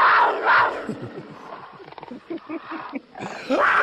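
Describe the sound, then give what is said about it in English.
A person imitates a mountain lion's roar with loud, raspy, growling bursts, rising and falling in a few drawn-out snarls, with no other sounds around it. “It started with the mountain lion.”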